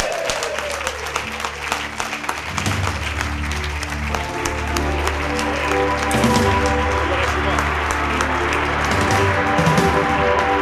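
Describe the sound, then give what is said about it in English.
Loud, sustained applause from an audience welcoming star guest Martin Allen, former West Ham player, fills the whole stretch, dense and continuous clapping with musical tones playing underneath and a bit of crowd noise mixed in. “Big round of applause, please, for Mad Dog, Martin Allen!”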